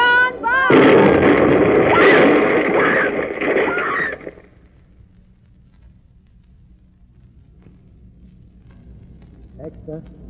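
A bomb explosion erupts after a brief rising whine, a loud, close roaring blast lasting a few seconds before cutting off abruptly into a faint low hum.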